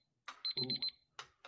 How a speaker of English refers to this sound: Not bad. 3 seconds to spare. Proud of you. See if this buzzer works.